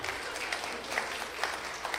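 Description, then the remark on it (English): An audience applauds steadily, a dense wash of many hands clapping at a moderate, even level, with a few sharper claps standing out and no voices over it. “You may want to save your applause because tomorrow we're going to Starbucks in the morning to break it.”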